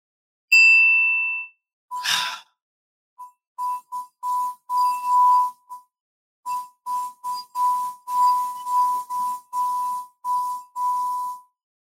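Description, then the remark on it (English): Someone strikes a gong: a bright metallic gong tone rings briefly, followed by a sharp crash, then a rapid, uneven series of repeated strikes, each ringing out shortly. Fairly loud, with no talking. “Hit the gong, baby. Hit that gong.”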